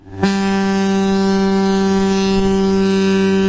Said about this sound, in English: Wait, is that a shofar? It said foghorn, but that doesn't actually sound like a foghorn at all.